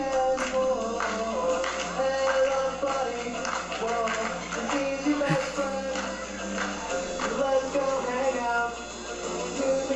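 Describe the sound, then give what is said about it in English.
Children performing a routine for a talent show clap in a steady rhythm, the sharp claps repeating throughout over a continuous blend of young voices and tonal sound, holding a fairly even loudness for the whole stretch. “Listen to the claps.”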